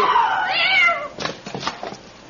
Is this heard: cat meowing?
yes